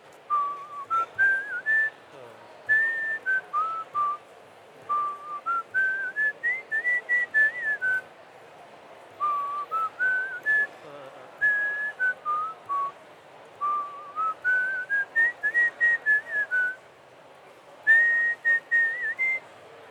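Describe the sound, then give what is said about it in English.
A person whistles a lively melody in repeated rising and falling phrases inside the Freeze Fair art tent in 2014, part of Koki Tanaka's project, clear and fairly loud, with brief pauses between phrases and a faint murmur of background noise underneath. “You just heard a whistler inside the Freeze Fair art tent in 2014.”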